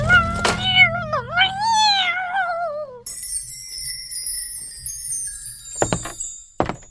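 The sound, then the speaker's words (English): A cat with a terrible wound to her eye, the eye torn out, lets out a loud, drawn-out, wavering yowl of distress for about three seconds, followed by a fainter high tinkling jingle and a few sharp clicks. “The cat! A terrible wound to her eye!”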